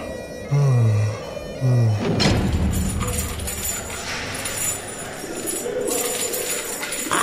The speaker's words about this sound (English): What are all these pigeons doing in my prison cell?